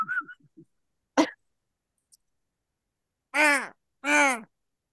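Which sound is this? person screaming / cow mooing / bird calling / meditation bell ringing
bird calling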